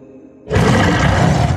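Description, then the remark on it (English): After a brief low hum, a loud, harsh monster roar bursts in and holds to the end, its gritty, crackling texture like shattering glass filling the sound. “The monster roared like shattering glass, and the young man ran.”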